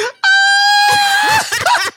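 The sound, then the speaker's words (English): A person lets out a loud, high-pitched scream held for over a second, then breaks into shorter ragged vocal bursts, close and intense. “Not you screaming like this.”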